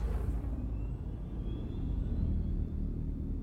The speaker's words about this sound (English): If you know electric cars, they're fucking silent, right? Yeah. So they wanted to keep the noise, and I think it's funny. It sounds like a cougar in a washing machine.